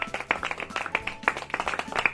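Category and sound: crowd, polite golf clap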